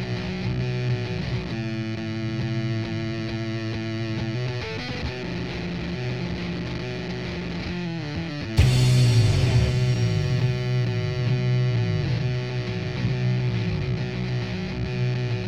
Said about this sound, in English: God, that sounds like the first distortion pedal I ever bought. Chunky thin.